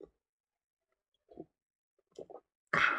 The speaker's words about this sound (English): I'm going to take a coffee sip break.